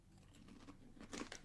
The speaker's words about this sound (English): Crunch by the mic.